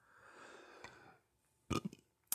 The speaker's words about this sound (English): Excuse me, I burp during this.